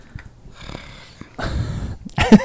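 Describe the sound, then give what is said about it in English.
A low, frustrated growl from a flustered person into a microphone, rough and throaty, swelling into a louder grunting burst near the end with no words spoken. “You're growling into your mic.”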